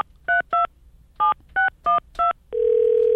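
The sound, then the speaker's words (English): A quick series of seven touch-tone dialing beeps on a traditional telephone in uneven groups, each a short two-pitch tone, followed by a steady hum like a line tone. Clear, with no talking. “I want to play this out for you so you can actually hear it. For kids who don't know how the traditional phone works.”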